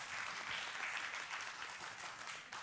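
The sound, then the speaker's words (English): An audience applauds steadily, a dense, continuous wash of many hands clapping at an even loudness that holds for a few seconds before tapering slightly at the end. “Oh, you can applaud.”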